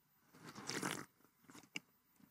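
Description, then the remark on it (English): A can of Dew soda, just taken from the fridge, cracks open, giving a short fizzing hiss and a sharp metallic click, fairly clear with no talking. “one thing that I want to do after mowing the lawn or being outside or on a walk or I'm sweaty and I'm just sticky, the one thing that just satisfies and refreshes me more than anything else is going to my fridge, grabbing the dew, hearing that noise.”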